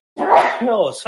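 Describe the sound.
A loud, sudden sneeze bursts out at the start, overlapping a spoken word, followed right away by a person talking.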